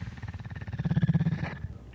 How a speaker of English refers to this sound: They do purr. They're the largest cat in the world that still purrs like your house cat purrs.